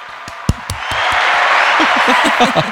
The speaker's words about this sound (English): Claps. Come on. Claps.